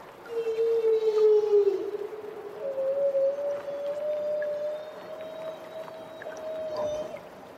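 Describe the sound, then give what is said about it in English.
Humpback whales, recorded underwater in Southeast Alaska by Bernie Kraus while keeping company with a harbor porpoise, call in long, tonal moans that slide and sustain, a drawn-out downward note followed by a steady rising cry, over a hissy ocean background with no voices. “These humpbacks were recorded underwater where they're keeping company with a harbor porpoise.”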